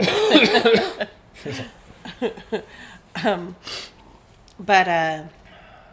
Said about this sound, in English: sorry for coughing. It's yucky.